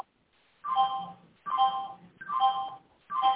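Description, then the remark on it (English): A timer alarm goes off in four repeated electronic bursts, each a warbling, mid-to-high-pitched ring lasting under a second with short gaps between, fairly loud with no voices. “Well, sounds like we got a timer or something.”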